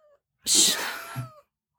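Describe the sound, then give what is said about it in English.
A cat, a farm cat wanting to be let in, gives one drawn-out, raspy meow lasting about a second, after a faint brief chirp; no one is speaking. “I gotta let my cat in”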